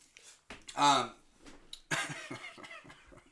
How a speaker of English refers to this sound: And then you're going to cough every time you take a drink of my drink.